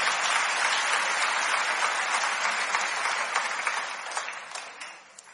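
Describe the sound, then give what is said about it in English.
An audience claps their hands when the preacher asks how many agree with him, in dense, steady applause that holds for several seconds, then thins out and fades, with a few scattered claps trailing at the end. “Just clap your hands, okay?”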